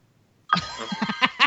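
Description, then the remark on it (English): A phone alert for an incoming text message starts abruptly after a brief quiet moment, a bright melodic tune of quick repeated chiming notes that grows slightly louder toward the end. “Who had the audacity to insult me by having their fucking phone on?”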